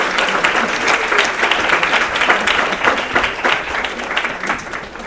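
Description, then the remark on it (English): Steady applause from a crowd welcoming a speaker at the first Melvin DeFleur Distinguished Lecture, many hands clapping in a dense, continuous patter that holds at a fairly loud level for several seconds before easing slightly at the end. “When I go back to my classes, I want to show them this so that when I come in, I'll get a little applause.”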